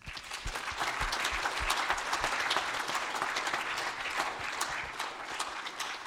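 A crowd at a worship gathering applauds steadily for about six seconds, clapping for Jesus, many hands clapping in a dense, even patter at a fairly strong, constant level with no voices standing out.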